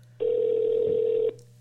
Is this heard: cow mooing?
no